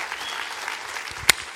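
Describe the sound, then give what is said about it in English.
A church audience at Christian Life Austin applauds themselves at a Memorial Day service, a steady wash of many hands clapping at once, with one sharp, louder clap standing out near the end of the burst. “Come on, clap for yourself.”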